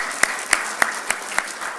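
An audience applauds, with a steady wash of clapping and a few sharper, evenly spaced claps standing out in a regular rhythm, at a moderate level with no talking.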